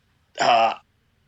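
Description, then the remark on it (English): A single short, raspy throat-clearing sound, fairly loud, lasting under half a second with a rough voiced rumble, surrounded by near silence, made after a long vape exhale. “That was just me having a nice long vape before I gave you my answer, probably.”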